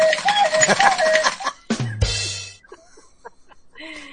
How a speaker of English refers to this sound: So, where's the buzzer? Okay, this is my buzzer.